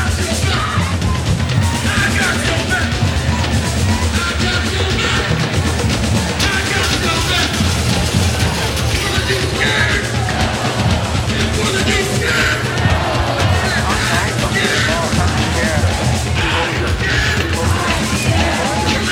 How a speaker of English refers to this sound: Yeah, the crowd is still pretty big. Still got a pretty big crowd.